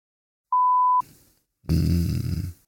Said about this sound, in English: Anyway, as always, we'll beep out the correct answer there, but some decent guesses by the guys.